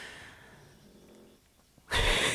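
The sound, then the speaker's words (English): A pet named Dino snores with a soft, raspy breath, then lets out one sudden loud, noisy snort at the end. No one speaks. “Dino's snoring.”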